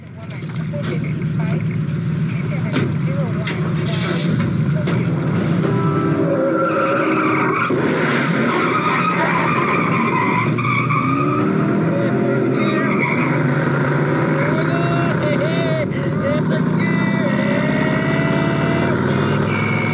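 A car speeds away from a police officer with tires skidding and squealing, the screeching rising and falling in long sweeps over a loud, steady engine roar that continues for the whole stretch.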